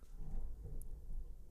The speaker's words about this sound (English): You hear the thunder? Yeah, like right as I said it. Man. Even God knows how ridiculous that is.